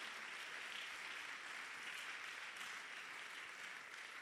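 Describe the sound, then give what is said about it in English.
A crowd claps steadily throughout, a dense, continuous wash of many hands with no talking over it, even in loudness. “Clap your hands for this, my dear sister.”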